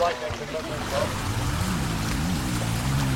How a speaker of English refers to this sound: Oh, we're getting wet now, boys. This is the river that's actually flooded right now.